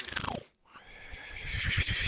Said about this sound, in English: Oh no. I made him snore in reverse. The sound is even worse.